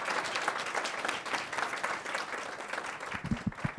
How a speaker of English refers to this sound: So if we could just give a quick round of applause to them.